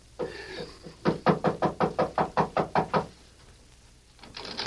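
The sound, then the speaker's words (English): A rapid, steady run of about ten firm knocks on a door, fairly loud, evenly spaced over two seconds, then a quiet pause with faint background noise. “Knock.”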